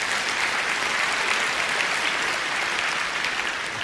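A crowd applauds steadily for the full few seconds, a dense, even wash of many hands clapping at once with no break and no voices standing out.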